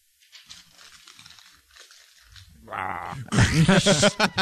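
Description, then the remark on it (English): Paper notes crinkle softly in a series of dry rustles, then louder ripping and crackling swells near the end as they are partly torn, as a sound effect of a smoke monster being ripped in two, with a rough, growling vocal quality mixed in. “I would like the paper crinkle torn half sound effect of a smoke monster being ripped in two.”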